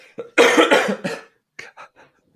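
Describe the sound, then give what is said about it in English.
A loud coughing fit: several harsh, rapid hacking bursts in a row, then a short pause and a few quieter, smaller coughs trailing off. No talking. “I'm going to start coughing.”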